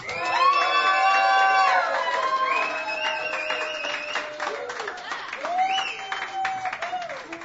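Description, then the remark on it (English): An audience cheering and applauding together at the Hideaway during a live Sunday Night Song Stage show, loud, with excited whoops and shouts rising over steady clapping that carries on throughout. “just walked through the door as we were cheering, and it was like, okay, perfect timing.”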